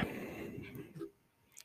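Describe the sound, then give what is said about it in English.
A sheet of math worksheet paper is flipped over to its graphing side with a soft rustle lasting about a second, then a brief faint crinkle as it settles. No one speaks. “I'll flip the paper over and we have graphing.”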